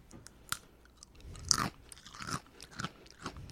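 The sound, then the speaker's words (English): Loud crunching of crisp lattice-cut potato chips with a little heat being chewed, with repeated sharp crackly bites in an irregular rhythm and no talking. “Your crunching is intense.”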